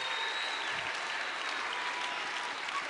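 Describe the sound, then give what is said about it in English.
An audience applauds steadily during a church service, a dense wash of many hands clapping at an even level for a few seconds, with no clear voices standing out. “Come on, give them a clap.”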